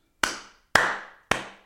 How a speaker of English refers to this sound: You need a round of applause right then.